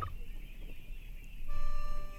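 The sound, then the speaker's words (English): A wild turkey gobbles once in the woods on a crisp fall morning, a brief, rattling, throaty burst near the end over a soft outdoor hush. No one speaks. “Senses taut, attuned to the serene harmonies of the turkey woods.”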